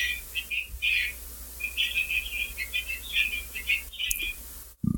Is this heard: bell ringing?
no